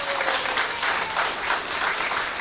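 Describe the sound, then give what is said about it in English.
Steady applause from an audience welcoming its newest member, dense overlapping claps sustained at an even level for the full stretch, fairly loud and without any talking. “Let's everybody give a round of applause.”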